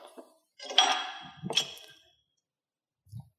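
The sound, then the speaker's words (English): Heavy metal clanks and rattles as a small but fairly heavy dinghy anchor is handled: two ringing clinks close together, then a pause and a soft dull thud, with no talking. “Sadly, all we could get was an anchor from a little dinghy. But to be fair, For a little dinghy, that's pretty heavy.”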